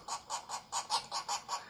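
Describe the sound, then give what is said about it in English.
A pileated woodpecker's short call: a quick run of about eight evenly spaced, nasal notes, moderately faint and heard alone with no talking. “And a short call.”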